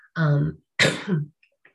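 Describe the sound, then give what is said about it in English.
A loud cough or throat-clearing in two quick bursts, the first rough and voiced, the second sharper and breathier, with no talking around it, from a person recovering from what may have been COVID. “excuse me, I'm recovering from what may have been COVID. So I may be coughing a bit.”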